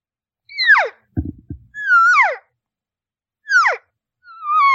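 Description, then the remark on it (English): Four high, nasal elk cow mews, a normal, standard cow call, each a short whistly call sliding downward in pitch, with a brief low thumping rustle between the first two and silence in the gaps. “So here's a normal cow sound that you'll hear.”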